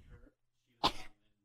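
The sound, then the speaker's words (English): A single sharp sneeze bursts out right up against the microphone, loud and breathy, with brief faint murmuring before it and quiet afterward. “I almost sneezed, like, literally into the microphone as a joke.”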